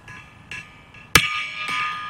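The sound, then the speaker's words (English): A big mallet strikes a gong with one loud, sharp hit, and a bright metallic shimmer rings on afterward, with a couple of softer taps around it and no talking. “Big hammer, big mallet here. How about the John Ohm gong?”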